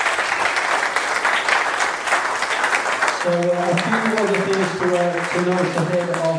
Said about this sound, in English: Ladies and gentlemen, we ask you to applaud